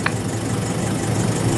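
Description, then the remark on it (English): A voice imitates an idling car engine: a low, steady, buzzing rumble held continuously for under two seconds at a fairly loud, even level, with no talking. “Yeah, turn the car off. No car would sound like that.”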